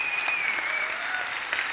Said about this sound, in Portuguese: Salve de palmas para eles, gente.